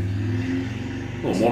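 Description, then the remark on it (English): A small engine outside, like a motorcycle or lawnmower, drones with a steady low, buzzy hum, then its pitch climbs sharply as it revs up at the very end. “A motorcycle or a lawnmower?”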